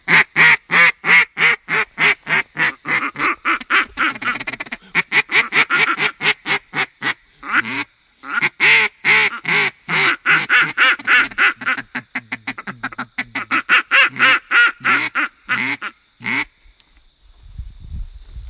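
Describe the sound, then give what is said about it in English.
Two duck callers working as a team blow their duck calls in unison, quacking in rapid, overlapping loud bursts, forming a dense rhythmic chatter of calls that rises and falls for about sixteen seconds before stopping. “And what that does is, once again, brings your decoys to life, and like we've talked about before, two or three different duck callers come alive.”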